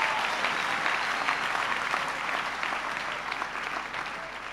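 An audience claps hands for the Lord in a dense, sustained burst of applause that holds steady and loud for several seconds, with no clear voices above the crackling wash of claps.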